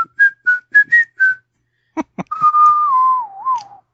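A person whistles a brief tune: five quick, evenly spaced notes, a short pause broken by a couple of clicks, then one long, wavering note that slides downward before fading.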